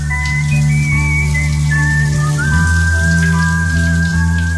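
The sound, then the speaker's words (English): Running shower water pours in a steady, loud hiss, with sustained whistle-like tones gliding and holding above it throughout; no one speaks. “Moments of clarity from the shower. It's the KCMQ Morning Shag's top of the hour shower thoughts.”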